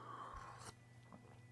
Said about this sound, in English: Good sip of pumpkin spice coffee my wife bought this weekend. It's delicious.